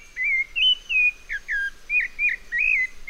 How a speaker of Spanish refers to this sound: Es un zorzal colorado, un ave muy parecida al petirrojo americano.